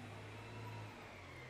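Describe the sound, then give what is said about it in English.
A big truck rumbles past, its deep, steady engine drone and road noise filling the short moment, with no one speaking. “We got a big truck coming past too.”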